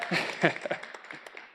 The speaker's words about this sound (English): That's when you guys can shout amen. You can stand up, give me a big clap. That's a good word, right?